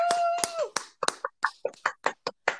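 An audience gives a short burst of clapping for Martin Luther King, about a dozen sharp claps in a fairly steady, quick rhythm, opening with a brief sustained vocal sound beneath the first few claps.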